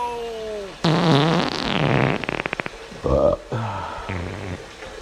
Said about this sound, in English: So I'm running water down the sink now, and it's going down.